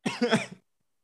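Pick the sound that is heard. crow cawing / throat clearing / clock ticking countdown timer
throat clearing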